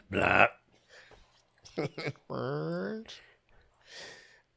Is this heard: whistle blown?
no